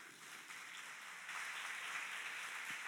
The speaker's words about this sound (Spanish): Así que a esas mamás espirituales también hoy quiero que les den un aplauso.